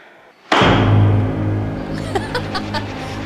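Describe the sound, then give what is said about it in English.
A single loud, sharp hand clap bursts out of quiet and leaves a booming ring that slowly fades, with a few faint clicks and soft sounds following. “gets shot back by the authority of his clap. That startled me.”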